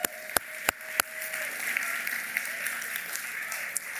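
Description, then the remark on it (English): An audience applauds to honor their absent pastor, Pastor Aaron, a dense, steady wash of many hands clapping for about four seconds, with a few sharp, louder claps standing out in the first second. “And real quick, this might be a little odd since he's out, but can we just give a round of applause to honor our pastor while he's out?”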